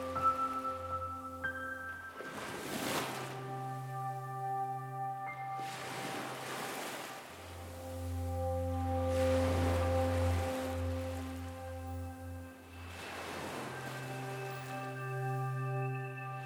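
Sea waves surge and wash in roughly every three to four seconds, each swell rising and fading softly, layered over a steady, sustained musical drone with no talking.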